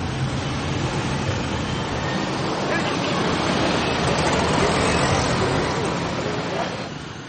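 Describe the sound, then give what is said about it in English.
Motocarro traffic fills a street in the city of Iquitos, where motocarros replace cars, with a dense, continuous drone of small engines and road noise, steady and fairly loud, easing off slightly in the final moment. “The city's isolation has led it to develop its own mobility culture, with motocarros replacing the car.”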